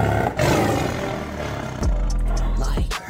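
A big cat, likely a liger, roars loudly, with deep rumbling growls building into a powerful roar and then a second heavy burst near the end, no voices present.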